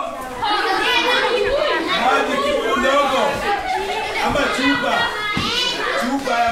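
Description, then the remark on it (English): A crowd of children chatters and shrieks nonstop inside Project Elimu, a ballet school, where girls flounce around in leggings and tutus; high voices overlap with bursts of giggling in a loud, lively hubbub that barely pauses. “Kids shriek and cackle. Girls flounce around in leggings and tutus.”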